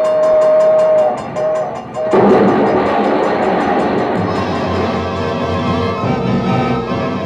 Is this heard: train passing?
yes